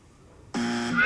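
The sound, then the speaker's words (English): A quiz-show buzzer blares suddenly after a brief quiet moment to signal a correct answer, a loud sustained electronic tone with a bright harmonic edge that holds steady to the end. “Oh, you got two buzzes tonight.”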